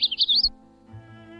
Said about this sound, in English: Male magnolia warblers have been described as having two songs, one in courtship and around the nest, and another slightly different song, heard at dawn and dusk, that lacks the louder final note.